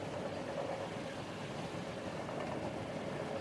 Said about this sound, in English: The vibrations of the train are strong, yet soothing. They even out into a relaxing hum as the train has reached a safe and steady speed for a long journey.